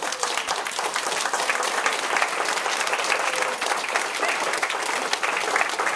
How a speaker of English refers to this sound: I ask you to give just a round of applause for the organizers of this conference that to show that there's an energy around what we've accomplished today, you would do just that, wouldn't you? I say we should stand and give them a round of applause.